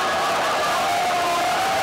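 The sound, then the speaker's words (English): A crowd of many voices shouts, heckles and clamors over one another in a steady, loud din, with scattered cheers rising, as opposing groups erupt at a Surrey City Council meeting. “It was a wild Surrey City Council meeting with outbursts from opposing groups and heckling.”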